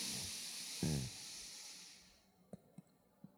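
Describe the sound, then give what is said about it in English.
A quiet, airy breath drawn in through the nose during a mindfulness breathing exercise lasts about two seconds, with a brief snuffly catch near the start. A few faint clicks follow in near silence. “And take another breath in through your nose.”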